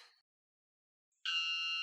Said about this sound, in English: Cool. It's the loudest bird ever recorded. Whoa. It's fucking loud.